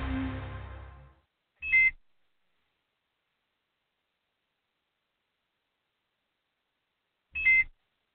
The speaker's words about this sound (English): I'm sitting at the red light. My ankle monitor beeping. Hadn't been charged.